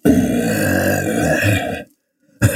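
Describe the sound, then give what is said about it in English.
A person imitates a bear with a loud, rough, rumbling growl breathed into a coffee cup, held for nearly two seconds, then a brief silence before a second growl begins. “I'm just trying to do a bear, like a bear.”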